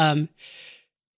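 A single sneeze: a short voiced intake followed by a breathy, hissing burst, then silence. No talking around it.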